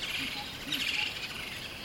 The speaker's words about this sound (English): Listen closely. Can you hear the cheerful chirping of birds hidden in the branches? They're singing just for you.